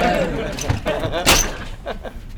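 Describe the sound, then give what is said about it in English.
A door bangs shut with one sharp, fairly loud slam partway through, while people talk before and after it. “Door gave you some trouble?”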